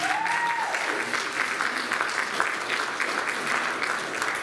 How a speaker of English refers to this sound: we're going to ask her to come up if you will give her a round of applause.